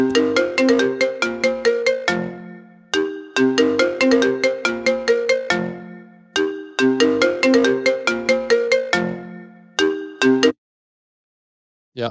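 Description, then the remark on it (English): A mobile phone ringtone plays a bright, repeating melodic tune loudly, cycling through several rings before cutting off abruptly, with no one speaking over it. “I gotta find my phone.”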